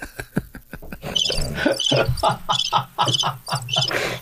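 Crickets chirp in steady, repeating bursts of high, trilling pulses, moderately loud, with a low background hum beneath them.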